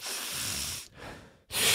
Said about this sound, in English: What was he doing? Breathing. Very heavily. Move the microphone. You go like this. You got to take a deep breath.